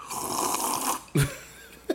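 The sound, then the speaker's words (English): A loud, airy slurp from a sip of a drink lasts about a second, followed by two brief low knocks. No one talks. “I hope all you heard that sip.”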